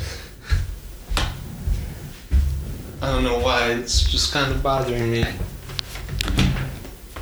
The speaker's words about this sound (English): Also, this big ass chair right behind us, I'm moving out of the way. The what? The big ass chair? This.